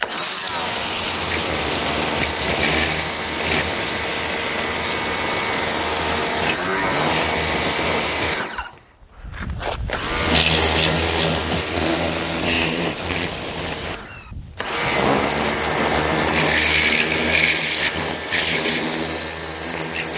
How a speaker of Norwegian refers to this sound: Da har jeg vært i butikken, kjøpt meg høytrykksspyler. Det første jeg gjør er å vanne sykkelen lett.